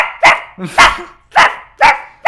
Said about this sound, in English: There's a dog!